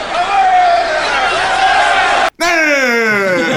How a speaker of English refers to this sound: Another good grunt of the night there. And then after that, he turns to the crowd, lifts the lifts the leg in triumph and goes...